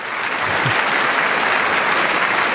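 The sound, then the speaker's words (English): An audience claps steadily and loudly, a dense, even wash of many hands that holds at one level for the whole stretch with no voices over it. “you gotta wait till the clap starts.”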